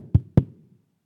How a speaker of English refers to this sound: He didn't say go build the house and the mansion and then knock on the door. He just said knock. Just knock.